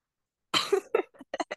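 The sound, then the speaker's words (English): A person coughs after a gasp sent something into the esophagus: one long, harsh, wet rasping cough followed by several shorter, quick hacks, as if clearing something caught in the throat. “Well, I like you said something about you said something that sparked something in me, and then it like gave me like a little bit of a gasp moment, and then the gasp moment sent stuff into my esophagus, I think.”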